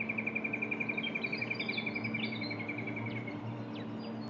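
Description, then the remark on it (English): Robins and honeyeaters sing outdoors at dawn with trees nearby: a rapid, steady series of high chirps runs for about three seconds while other birds add scattered whistles and rising calls, over a low ambient hum. “You can hear the birds starting to wake up, the robins and honeyeaters.”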